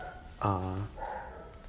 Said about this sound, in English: Sorry, it's my brother-in-law's dog.